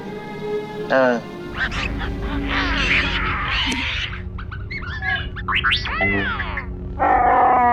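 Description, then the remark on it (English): A Wookiee, upset after losing a game of chess, lets out a string of loud, harsh screaming roars, warbling and honking in rising and falling bursts over a low steady rumble, ending on a sustained bellow. “You made a fair move. Screaming about it can't help you.”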